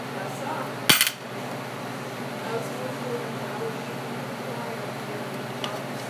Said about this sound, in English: Got some gold coins.